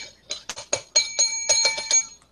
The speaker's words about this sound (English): The bell worked.